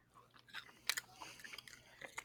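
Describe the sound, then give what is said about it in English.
Wet chewing of a soft, sticky candy, with a series of smacking, squishy bites in an irregular rhythm and no talking. “Don't do that. Chew it.”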